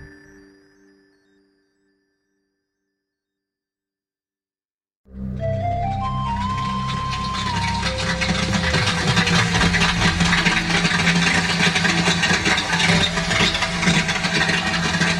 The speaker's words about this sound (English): We're listening to sperm whales, who, like dolphins, use sound to echolocate, finding their way around underwater. This week, male sperm whales are probably trying to find females. It's their mating season.